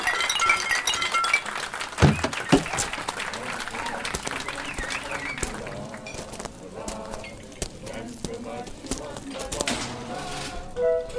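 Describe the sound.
Glasses clink repeatedly in a busy, overlapping clatter as a group raises their glasses and drinks a toast, mixed with crowd noise that resembles applause and cheering, with voices murmuring underneath throughout.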